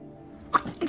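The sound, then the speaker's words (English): A sharp sneeze bursts out after a near-silent moment, followed by a smaller second burst, like a quick nasal exhale. No one speaks. “Bless you. Thanks.”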